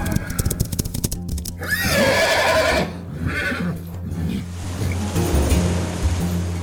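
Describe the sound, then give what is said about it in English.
Horses pulling an army's chariots in a chase whinny loudly over a rushing wash of sea waves, with a low rumbling clatter like hooves and wheels underneath; one long, shrill neigh rises in the middle, and no one speaks. “So he gathered hundreds of soldiers and chariots and began the chase.”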